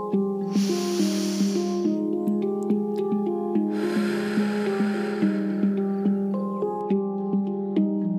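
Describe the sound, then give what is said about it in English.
During a guided breathing exercise, over a steady, gently plucked musical backing, a soft airy inhale through the nose lasts just over a second, then after a pause a longer, fuller breathy exhale through the mouth whooshes out for nearly three seconds. “We are going to take a deep inhale in through the nose and release through the mouth in 3, 2, 1.”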